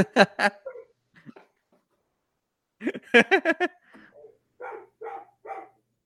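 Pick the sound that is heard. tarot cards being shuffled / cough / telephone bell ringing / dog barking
dog barking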